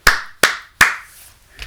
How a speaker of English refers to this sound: I see a lot of time, even coaches, when the game is going well, sometime when the game is not going well, they'll stand up and look at the rest of the guys sitting on the sideline and they'll start clapping.